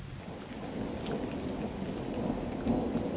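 Steady rain hisses without a break while deep thunder rumbles low underneath, swelling slightly near the end. No voices, just the continuous wash of a storm.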